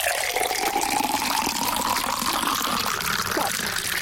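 A steady stream of water pours into a container during a game, over a carpet. A continuous splashing gurgle whose tone slowly rises as the vessel fills lasts about four seconds, with no talking.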